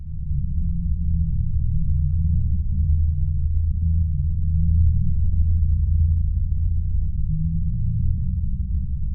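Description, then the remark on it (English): An approximation of what people report hearing as the Taos hum: a steady, very low-pitched droning rumble that holds unbroken for the whole stretch, with faint crackly flickers above it and no voices. “I'll go into why I describe it as an approximation later, but would you like to hear what the Taos hum reportedly sounds like?”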